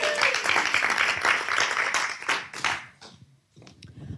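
A crowd breaks into dense, steady applause, many hands clapping together for about three seconds before it thins out and fades, with a few scattered claps lingering at the end.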